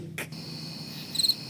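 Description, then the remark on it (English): A cricket chirps in a steady, high-pitched trill, with a short cluster of louder pulses near the end. A brief rustling burst comes at the start, and no one speaks. “Insert cricket noise right here.”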